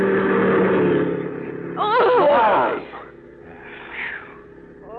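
A car engine drones steadily, then tires shriek in a wavering, sliding screech for about a second as someone grabs the wheel and the brakes are hit, before the noise falls away, with a fainter squeal trailing off near the end.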